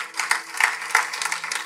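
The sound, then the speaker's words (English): A crowd claps together, a steady dense patter of many hands with a few sharper claps standing out, sustained at moderate loudness with no talking. “You can clap for that.”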